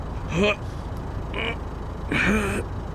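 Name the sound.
car engine revving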